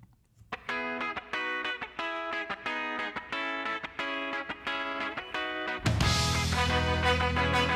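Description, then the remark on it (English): A 1990s ska rock song kicks off with choppy, rhythmic guitar chords, then about six seconds in the full band crashes in with loud, distorted guitar and drums, with no voices. “This song fucking rocks too.”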